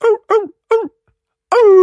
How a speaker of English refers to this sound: here in cloudy Denver, Colorado, hearing the dogs howl in the distance with a little snifter of brandy.